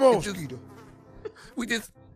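fly buzzing

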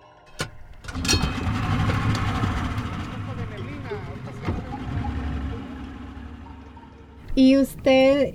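boat engine idling

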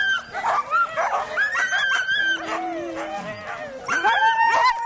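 sled dogs barking excitedly

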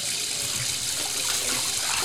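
water running

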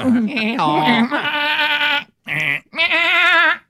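goat bleating

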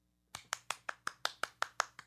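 audience applause

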